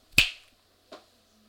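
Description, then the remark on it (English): A sharp, crisp finger snap rings out, as Hulk snaps wearing the gauntlet, followed less than a second later by a softer, duller second snap, with quiet around them and no talking. “He puts on the gauntlet, and it's just, it's eating him. You can see it's hurting, and then he snaps.”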